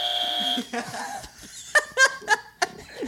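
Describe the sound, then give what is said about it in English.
Several short, bright electronic game buzzer tones go off in quick, uneven succession as players buzz in during a true-or-false quiz, mixed with laughter and chuckling from people, after a steady high beep at the start. “And be patient with your fucking buzzers.”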